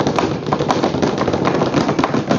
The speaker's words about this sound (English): Drum rolls again.